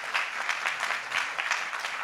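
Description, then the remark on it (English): A crowd claps steadily for a dance performance, a dense wash of many hands with a few sharper individual claps standing out, fairly loud and unbroken for a couple of seconds with no voices. “So please give them a beautiful round of applause.”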